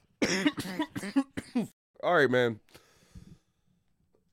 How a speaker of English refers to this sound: I'm having a little cough attack.